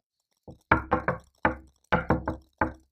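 A man knocks firmly on a wooden house door, loud, in two quick groups: a soft tap followed by three raps, then a pause and four more raps. No voices.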